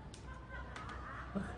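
A trapped bird caws in a few short, harsh bursts, fairly quiet, over a steady murky background noise.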